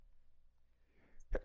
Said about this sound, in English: Excuse me. Bless you.